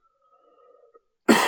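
A faint, low murmur gives way to one abrupt, loud cough from a person trying to clear their throat, a harsh burst that clears the throat and runs to the end.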